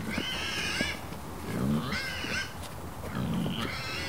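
An adult female pig grunts low in a couple of short bursts at a male about a third her size, mixed with high, whinnying squeals that rise and fall against steady background noise.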